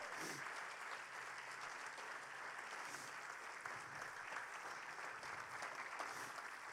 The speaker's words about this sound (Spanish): Dele un aplauso al Señor por ello.